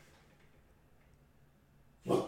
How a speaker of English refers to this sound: Shit, the puppy done woke up from his nap.